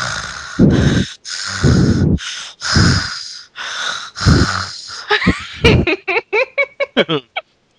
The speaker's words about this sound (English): Now that I've hyperventilated. Now I feel all weird and I'm feeling woozy. Lightheaded. My left arm hurts. I don't usually breathe that deeply, you see. My body's not used to it.